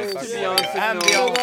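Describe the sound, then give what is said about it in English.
Glass beer bottles clink together in a few quick, bright knocks as a toast on a street, while voices murmur underneath. “So we stood on the street and drank beer”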